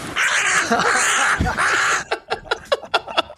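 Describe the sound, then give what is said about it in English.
Harsh, frantic cawing from several crows fighting, with one bird attacked by multiple birds, overlaps in a loud, chaotic squabble, then breaks into a rapid series of short, sharp caws and squawks. “Yeah, this bird's getting attacked by multiple birds, man. This is real deal shit right here. Yeah. A crow fight.”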